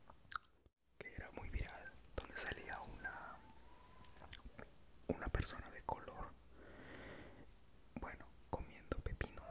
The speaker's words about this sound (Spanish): Pues no tenía pensado después de este video hacer este el siguiente video de ASMR, pero con objetos comestibles, bueno, alimentos comestibles, con chifle.